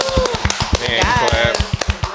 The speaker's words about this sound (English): And we have a very special guest by the name of Issa Rae. Everybody give her a hand clap.